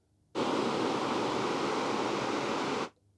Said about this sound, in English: Here are samples of the six different noises that Apple provides. Balanced noise. Bright noise. Dark noise. Ocean.